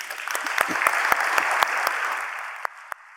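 A church audience breaks into steady applause welcoming a speaker from EduNations, dense clapping that holds evenly for a few seconds, then thins out into a few scattered last claps as it fades.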